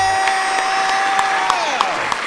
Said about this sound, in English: And the crowd goes crazy.